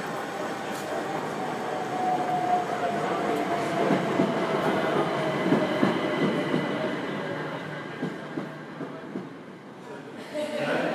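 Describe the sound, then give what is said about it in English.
A train arrives at a station, rumbling in steadily with a faint high squeal of wheels, then slows, its rhythmic clacks thinning out near the end. Muffled voices sit faintly in the background. “Hopefully my train is on its way.”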